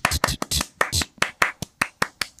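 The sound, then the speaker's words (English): Hand clapping: about a dozen sharp, crisp claps in quick succession, loud and slightly uneven in rhythm, with a few coming in close pairs and no talking over them. “Too many claps.”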